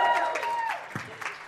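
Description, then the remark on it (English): A short burst of crowd applause for a woman cast to play Sarai, Abram's wife, a steady wash of clapping from many hands with a few voices calling out over it, fading slightly toward the end. “You can give her a rousing round of applause.”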